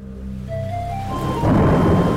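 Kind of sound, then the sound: nature, rain with thunder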